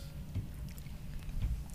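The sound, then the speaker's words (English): Dull, low thumps of a microphone being bumped, two soft knocks over a steady muffled rumble and handling noise, with no one speaking. “No, sorry, I bumped my mic.”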